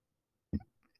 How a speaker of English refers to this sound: I'm so sorry, you guys. That was so gross. I just burped on the pod. I did it again.